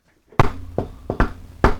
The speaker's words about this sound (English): Okay, you go to the unmarked doors just off Hemlock. Watch out for coppers, see? Then real quiet like the secret knock.